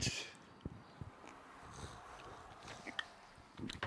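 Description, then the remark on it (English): Quiet mouth sounds of someone sipping and gulping a beer that has Simcoe, Idaho 7, Columbus and Vic's Secret in it, with soft wet clicks and a few small swallows spread over a few seconds, no talking. “Gulp. Here we go.”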